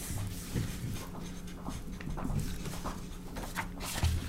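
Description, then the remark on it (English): A dog named Sophie gnawing on a bone: irregular, low crunching and scraping with occasional sharper clicks, fairly quiet and continuous, with no talking. “She's like chewing on the bone.”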